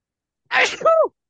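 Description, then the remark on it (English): A single loud sneeze: a sharp breathy burst that trails into a short voiced tail, with silence before and after. “Bless you.”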